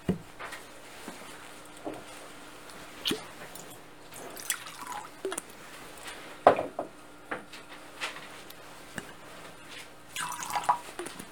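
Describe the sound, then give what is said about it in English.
Water is poured into a wine chalice: a few soft trickles and scattered drips, with faint clinks of metal. There is no speech. “By the mystery of this water and wine, may we come to share in the divinity.”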